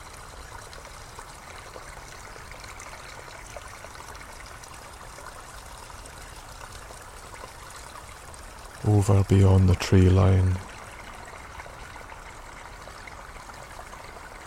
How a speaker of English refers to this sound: we can still hear the roar of the main glen water rushing away, hissing through the trees. We're not so far from it now.